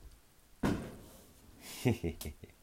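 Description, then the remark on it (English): Distant fireworks pop: one sharp, booming crack is followed a moment later by a quick cluster of three or four lighter bangs, each fading out over a quiet background. “Fireworks popping off.”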